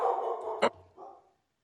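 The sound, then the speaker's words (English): Dogs bark in a quick, short burst, a sharp yap standing out amid lower, drawn-out vocal noises, with no one talking. “I think the dogs made a comment, but I cannot translate it at this point.”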